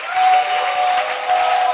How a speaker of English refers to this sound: And as we are clapping our hands, let's put our hands together for the choir.